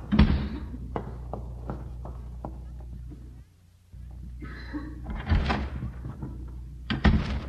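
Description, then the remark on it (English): A door slams shut with a heavy thud as Mr. Haney leaves, surrounded by a series of sharper knocks and clatters, then a brief hush before more bumping and another loud bang. “Well, I couldn't see him from where we were hiding, but I heard the door slam.”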